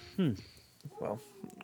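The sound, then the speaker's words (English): A cat named Elvis lets out two short, wavering howls, the first loud, the second softer and more drawn out, over a quiet low background. “Can you hear Elvis howling?”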